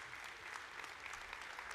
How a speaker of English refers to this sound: So if you're a guest with us today, you're just a part of the family. Give all of our guests a huge round of applause, okay?